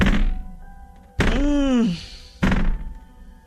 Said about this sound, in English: There's banging on the doors.